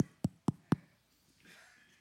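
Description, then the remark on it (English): Four quick, evenly spaced, sharp knocks on a door by a man at midnight, followed by a stretch of quiet with a faint hiss of background noise. “So imagine, all of a sudden at midnight, there's a guy knocking.”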